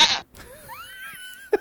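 A short burst of noise, then a wavering, rising goat bleat that stretches out for about a second, followed by a brief thump. No one speaks.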